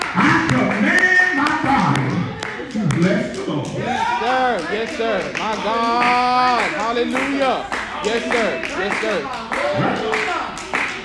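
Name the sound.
audience clapping hands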